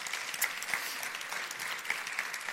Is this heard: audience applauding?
yes